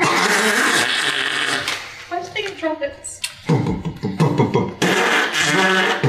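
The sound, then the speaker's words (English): A voice imitates 100 rats lifting trumpets out of swamp water and blowing them, a wet, sloppy trumpet blast: loud spluttering, raspy bursts at the start and end, with wobbly, pitched buzzing in between, all delivered without words. “So unfortunately it's a kind of wet, sloppy, watery noise because the swamp dust and kind of sprays swamp dust all over the bard.”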